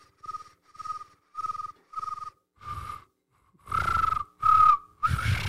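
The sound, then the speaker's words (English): Someone whistles an imitation of a cricket: four short, evenly spaced chirps on a steady high pitch, then a pause and three louder, raspier, breathier bursts. “It's like a cricket with phlegm.”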